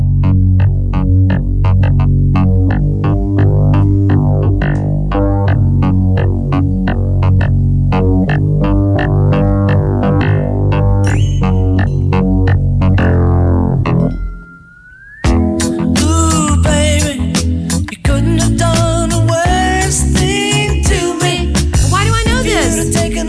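A loud rock song recording with a steady, driving beat and layered instruments; it briefly drops to a near-pause partway through before resuming with a brighter, denser section.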